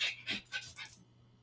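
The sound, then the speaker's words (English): A female dog in a house pants close to the microphone held down to her: four quick, breathy huffs in a steady rhythm, then fading into a quiet hum. “Sorry, I was rudely interrupted by my dog.”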